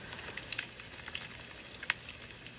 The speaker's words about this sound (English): If it's snowing outside, if it's bitter cold outside, come around my fireplace. Come around my bonfire.